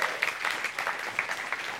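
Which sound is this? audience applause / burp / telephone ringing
audience applause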